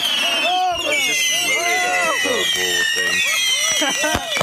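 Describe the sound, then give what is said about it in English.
Bottle rockets and firecrackers going off in a bonfire: shrill, wavering whistles run throughout, with a few sharp cracking pops and voices underneath. “Well, they threw some bottle rockets in there. You can tell by the sound.”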